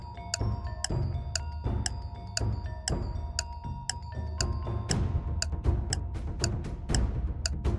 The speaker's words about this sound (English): Have you already figured it out? Time is ticking.